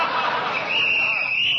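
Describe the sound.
Crowd noise and murmuring voices, then a long, steady, shrill referee's whistle blast on a football field that holds for about a second over the din.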